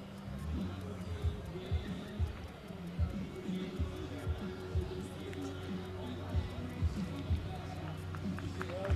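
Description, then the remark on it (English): A stadium crowd at a baseball game applauds injured player Fisher as he gets up, in a steady, dense wash of clapping and murmur, with scattered sharper claps rising above a low rumble of voices throughout. “Now Fisher up, crowd giving him a round of applause here.”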